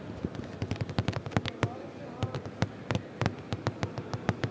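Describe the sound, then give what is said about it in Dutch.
A chair being banged together in a large hall: a rapid, irregular series of sharp wooden knocks and taps, some louder than others, with a faint background hum between hits. “En nu ga je gewoon die stoel in elkaar rammen.”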